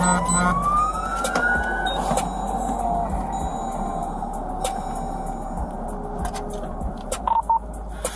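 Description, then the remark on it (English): A police car siren winds up in a rising wail over steady road and engine noise, then drops away, with a few short electronic beeps near the end. An officer has switched on emergency lights and sirens to make a traffic stop, ending in a store parking lot on Mall Loop. No one speaks. “I then turned around and initiated my emergency lights and sirens and conducted a traffic stop in the parking lot of Grand Home Furnishings on Mall Loop.”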